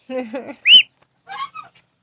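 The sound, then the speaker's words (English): A pet duck gives a few short, nasal, harmonic calls while operating a phone with its bill, with one louder squawk in the middle, and a faint steady high-pitched tone runs underneath throughout. “You're listening to ASMR and the duck operating my phone with its bill.”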